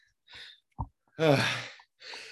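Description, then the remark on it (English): Heavy breathing after doing 100 jumping jacks: a breathy inhale, a short thump, then a long voiced exhale like a tired sigh, followed by another rushed breath. No talking. “I mean, I'm breathing a little heavy, but it's not bad.”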